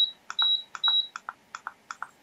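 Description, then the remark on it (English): Quick electronic beeps from a heater thermostat as its minus key is pressed repeatedly to lower the setting to 65 degrees, a steady rhythm of short chirps with a few longer tones early on, clear with no talking. “Let's say if I want to set my room to 65, I can go, and I'm going to press my minus key multiple times.”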